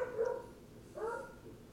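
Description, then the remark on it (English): A dog lets out two barks about a second apart, the second sharper and rising, sounding somewhat muffled. No one speaks. “I had to put a dog in their crate because they're barking too loud, but keep going with what happened.”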